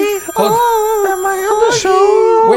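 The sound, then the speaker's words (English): A phone ringtone for an incoming call plays a loud electronic melody, its bright harmonic tones stepping up and down in pitch without pause for a couple of seconds. “We got a phone call coming.”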